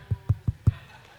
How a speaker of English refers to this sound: Now, I wasn't asking for you to clap.